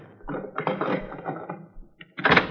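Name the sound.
heavy door being opened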